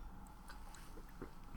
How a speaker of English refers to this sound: Taking a drink of water.